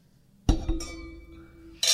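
glasses clinking

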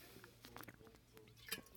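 sipping water

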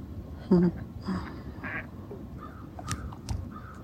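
ducks quacking

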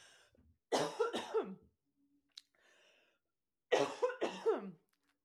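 coughing and throat clearing

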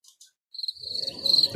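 crickets chirping

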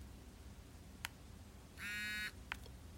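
mobile phone vibrating

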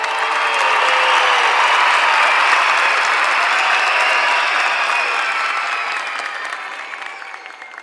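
applause

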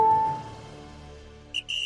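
referee's final whistle blowing

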